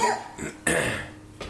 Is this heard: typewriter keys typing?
no